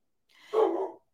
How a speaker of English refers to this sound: Probably because mine is barking. Sorry about that. He was behaving.